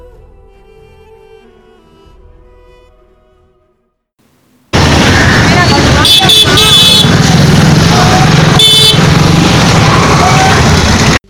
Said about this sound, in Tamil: பிரம்மாண்டமான என்ஏசி போஸ் சாலையில் இரு புறங்களும் மக்கள் மற்றும் வண்டிகள் இரைச்சல் சத்தத்தின் அமைதியாகவும் கம்பீரமாகவும் உயர்ந்து தன் பெருமையை தனக்குள் எதிரொலிக்க 170 ஆண்டுகளாய் வரலாற்று சிறப்புமிக்க பச்சையப்பன் மண்டபம் இன்றும் நாம் காணலாம்.